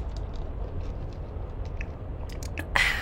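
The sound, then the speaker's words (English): A sip of an iced oat milk drink, soft wet clicks and squishy mouth sounds building to a brief, louder slurp near the end over a low background rumble. No one speaks. “Yeah. Okay, let's sip. I sipped already.”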